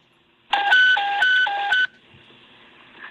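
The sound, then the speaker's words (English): Fire dispatch radio alert tones for the final call honoring Lieutenant Sean Carroll of Truck 1B: a loud, steady electronic signal alternating between a lower and a higher pitch several times for just over a second, then cutting off to faint radio hiss. “All units, stand by for tone”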